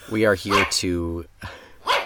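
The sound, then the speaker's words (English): Loud barking in a dog pound: a voice imitates dogs with a couple of sharp barks, a drawn-out whining howl, then one more bark after a brief pause. “We are here to make sure all of these dogs are adopted for the winter.”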